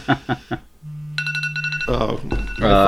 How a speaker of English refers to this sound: My phone is ringing because I was taking a nap and I set an alarm for when we were going to do our podcast. All right. So that's what that beeping is.